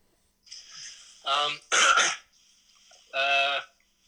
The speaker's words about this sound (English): Sorry, clear my throat.